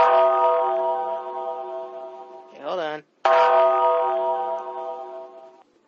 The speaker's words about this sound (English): Hit the bell. Hey, what right now? Hit the Undertaker bell.